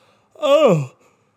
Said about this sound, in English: Oh, I'm yawning again.